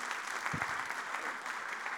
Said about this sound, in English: Cheers. Little round of applause.